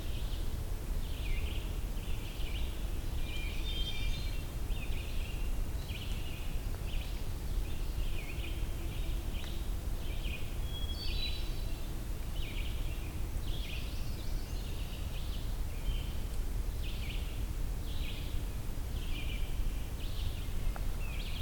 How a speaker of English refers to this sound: Got lots of red-eyed vireos in the background. Got this hermit thrush singing.